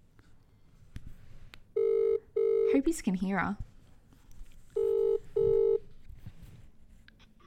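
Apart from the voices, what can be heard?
telephone dialing and ringing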